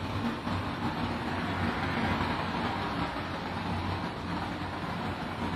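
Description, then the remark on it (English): Steady street traffic rumbles outside, a continuous wash of engine and tire noise with a low hum, fairly even in loudness. No single car clearly stands out from the flow. No one speaks. “So right now, if you listen carefully to the traffic sounds outside, see if you can follow the sound of one car as it goes by.”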